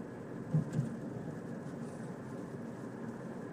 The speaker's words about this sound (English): I'm driving in the car on the way home from a show at the Lyric Theater on Melrose and La Brea, basically.